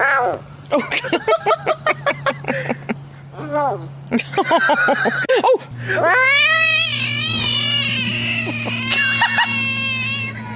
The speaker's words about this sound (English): Bones, I'm going to go with large frog. I feel like I used to hear that when they'd get eaten by snakes. I would find them because I'd hear that noise. Well, it is a large frog.